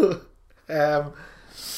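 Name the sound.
yawn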